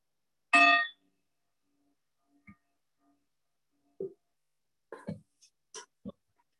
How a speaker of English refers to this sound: So welcome to meditation. And there'll be three bells, one at the beginning, one halfway through, and one at the end.